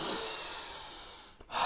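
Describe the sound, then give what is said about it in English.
A long, airy breath drawn in through the nose, steady, followed by a brief pause before another breath begins, as part of a nose-breathing exercise: in through the nose, out through the mouth. No one speaks. “Breathe through your nose 4 times, in through your nose, out through your mouth, 4 big breaths.”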